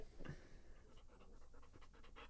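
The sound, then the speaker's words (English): A dog pants, quick rhythmic breaths repeating steadily over a couple of seconds with a soft, airy rasp and no talking. “You can hear him breathing.”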